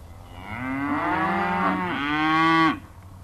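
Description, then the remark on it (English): Cows in a field mooing as they close in after a landing: one long, loud, drawn-out moo lasting over two seconds, with a second moo overlapping near its end before both cut off. No voices. “I always knew those cows would close in.”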